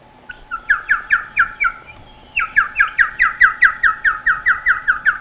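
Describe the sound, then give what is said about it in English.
A water-filled 3D-printed whistle, printed in Protopasta Lulz Green filament, warbles in a rapid, bubbling trill, shrill repeated chirps about ten per second in two bursts with a brief break, loud and alone with no talking. “And here's what it sounds like. If you put water on the inside too, it does that.”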